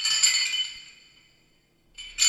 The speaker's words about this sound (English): Pausing between each cautious motion, you watch to see if the guard twitches at the metallic clinking of the chain's rustle.